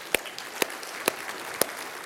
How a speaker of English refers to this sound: a few short months from now, we are breaking ground at our new West Campus out on the west side of Bella Vista. It's going to be awesome. And this is a great, great thing. And I'm going to encourage you to clap for that, because that is a big deal.